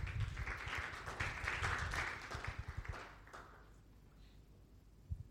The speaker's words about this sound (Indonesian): Come on, tepuk tangan buat Tuhan.